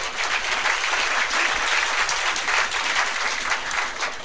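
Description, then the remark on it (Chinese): An audience applauds for Amway steadily for a few seconds, a dense, sustained wash of many hands clapping at an even, fairly loud level with no voices standing out. “你们再给安利一个掌声”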